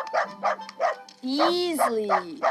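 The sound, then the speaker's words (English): A mutt barks three or four times in a quick, even rhythm, then lets out a longer, wavering whine-like cry. It is fairly loud. “Beautiful animal, mammal, canine, dog, mutt.”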